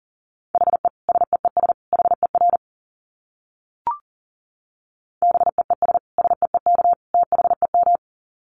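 Fast Morse code at about 40 words per minute: a steady mid-pitched beep keyed in rapid dots and dashes, sent in two bursts separated by a pause with a single soft click.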